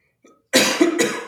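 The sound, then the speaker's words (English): A loud cough comes in two harsh bursts right after a faint short intake of breath, with no talking around it. “We all cough sometimes, but coughing's a different Pokemon, so I'd ask you to stop.”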